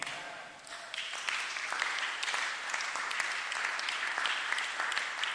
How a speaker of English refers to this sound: You see, your clapping does not show that. But anyway, your clapping doesn't change anything I'm saying.